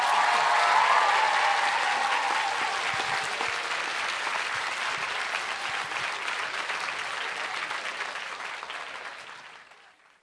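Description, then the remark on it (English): A large audience at an Edinburgh Festival author event claps loudly and continuously, a dense wash of applause that holds steady for several seconds before tapering off at the end. “Can I have one last Edinburgh Festival round of applause so loud that she can hear it next door?”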